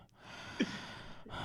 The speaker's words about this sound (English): I'm just breathing. I'm just breathing. I'm just breathing.